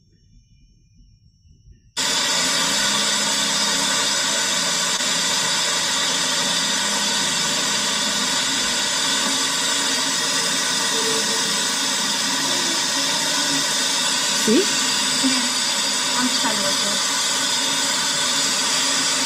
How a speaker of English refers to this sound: It's a waterfall, guys. A waterfall inside the mountain. Now we've seen waterfalls outside, right? In the different states. But have you ever seen a waterfall inside a mountain.